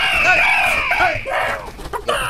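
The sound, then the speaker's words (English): A man loudly imitates a rooster's crow, one long strained cry that wavers and trails off into rough breathy noise, with no other talking. “Stop making bird noises.”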